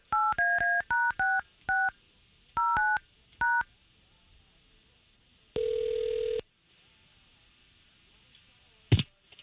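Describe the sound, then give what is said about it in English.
A rapid run of about ten telephone keypad dialing tones in uneven clusters as a morning radio show phones a woman, followed by a single longer ringing tone and a brief click, clear with no talking. “Let's get her on the phone.”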